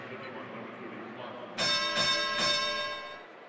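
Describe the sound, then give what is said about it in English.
A bright bell rings out suddenly and loudly at a Jazz basketball game, the 30-point bell, with a couple of quick repeated strikes that shimmer and ring on over a murmuring background crowd. “Let's find out who rang the 30-point bell before Bogey takes his free throw.”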